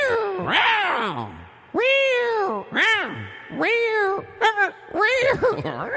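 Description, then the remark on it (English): A human voice imitates a cat, giving about six drawn-out, wavering meows with a reverberant echo trailing each one, loud, with brief gaps between calls. “Hey, keep it on echo. Make a cat on echo.”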